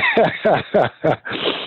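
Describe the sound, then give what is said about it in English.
A person coughs from a tickle in the throat, a quick series of four or five throaty coughs in a steady rhythm, moderately loud, each short burst rough and voiced, with brief gaps between them. “Sorry, but I had to cough.”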